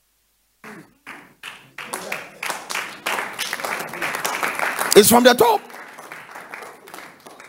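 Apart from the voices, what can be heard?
audience clapping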